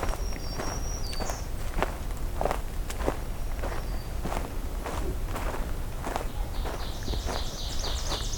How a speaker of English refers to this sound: There's the oven bird again.